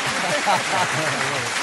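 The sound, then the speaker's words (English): A crowd cheers and shouts at the Nooner Show in a steady, dense wash of voices lasting under two seconds, with a few individual yells rising above the roar and no clear speech. “It's the crowd. Listen to the crowd.”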